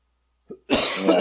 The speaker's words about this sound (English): Okay, well, I've got this fucking, this lingering COVID whatever cough, so I'm going to go before.